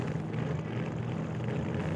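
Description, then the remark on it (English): A hydroplane engine revving up into turbo mode roars loudly and continuously, a thick low droning hum layered with broad rushing noise, holding steady for the whole two seconds with no voices. “The hydroplane revs up into turbo mode. The engines blast plumes of flame as the hydro approaches the bankers.”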